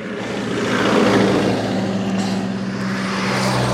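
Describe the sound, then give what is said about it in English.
A car passes on a resurfaced asphalt road climbing through the countryside of Sardinia, Italy, its engine and tyre roar building briefly then holding steady as a broad, fairly loud rumble with a low droning hum underneath. No one speaks. “There's the odd car coming past.”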